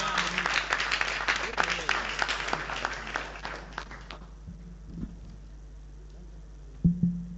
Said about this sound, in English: Please, a round of applause for him.